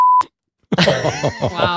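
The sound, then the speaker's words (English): A short, loud single-pitched censor beep, covering a sniff into the microphone, cuts in abruptly, followed by a brief silence and then a rough, throaty burst of voice close to the microphone. “I hope you beep those.”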